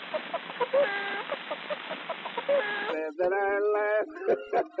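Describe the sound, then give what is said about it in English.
People imitate barnyard rooster crowing and clucking calls on an early disc recording, repeating loudly, first with a thin, tinny recorded quality, then switching to a fuller, brighter stretch of crowing for the last couple of seconds. “You know, there's no bird in the room, and yet you hear the sound of a bird.”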